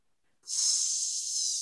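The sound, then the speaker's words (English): A snake gives one sharp, steady hiss that starts abruptly and holds at an even, loud level, airy and high-pitched, with no voices. “You hear that? That's a fucking snake.”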